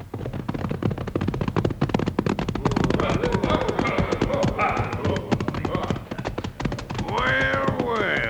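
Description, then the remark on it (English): Horse hooves clatter in a rapid, steady clip-clop rhythm, loud throughout, as a rider rides right up, with wavering tonal sounds rising over the hoofbeats midway and again near the end. “He's going to ride right up to us, Bill.”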